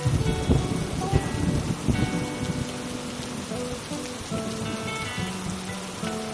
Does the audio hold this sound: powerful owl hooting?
no